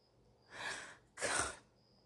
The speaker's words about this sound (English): I'm not crying. I'm just sniffing. I shouldn't be sniffing. Excuse me for that. It happens, though.